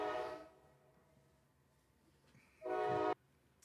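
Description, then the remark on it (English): A passing train, the second of the day, sounds its horn in two loud, brassy blasts, a short one and then another about two seconds later, with a low rail rumble in between. “It's train day, by the way. It's train day, yeah. This is the second train.”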